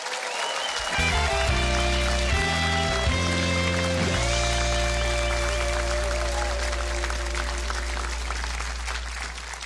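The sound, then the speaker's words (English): A crowd applauds steadily, a dense wash of clapping that holds for the full stretch while a band plays underneath, a bass line stepping through notes before settling on one sustained tone. The hometown audience is applauding Senator Bill Hagerty of Tennessee as he is welcomed onto a show in his home county. “Can I just tell you, it's not often that the audience so loves a guy that they applauded before I even get through the introduction.”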